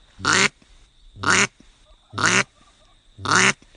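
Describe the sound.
Four evenly spaced, buzzy hen quacks blown on a triple-reed duck call, each about a quarter second long, loud with short pauses between them and no talking.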